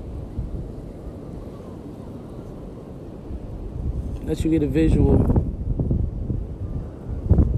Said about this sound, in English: With the sound. Let you hear it and see it with your eyes and your ears. I want to share that ocean roar with you.